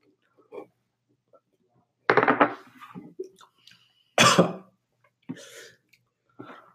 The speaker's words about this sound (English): So you cough. I breathe through my nose.